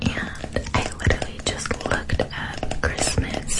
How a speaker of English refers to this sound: She was clicking her fingers against her phone case.